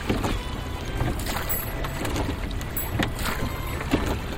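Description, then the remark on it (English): Oars of a rowboat dip and pull through water in a loose, uneven rhythm as someone rows out past a boat basin in the morning, each stroke bringing a soft splash and swish over a steady wash of wind and open water, moderately loud. “I can ship the oars and just stare out to sea.”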